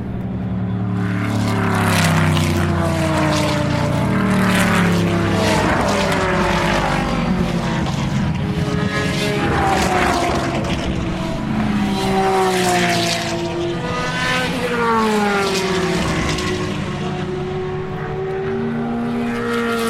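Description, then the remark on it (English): Loud race car engines roar past at speed, including a Corvette, their pitch rising and falling as several cars sweep by in quick succession, continuous with no talking. “Here comes a Corvette.”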